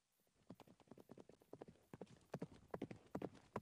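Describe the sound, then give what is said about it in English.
Horse hooves clip-clop in a quick, steady rhythm, a run of sharp hollow knocks that grow slightly louder toward the end, with no voices. “Without a doubt, Simeon rushed over as quickly as possible as he could to the temple, expecting to hear the hoofbeats of horses.”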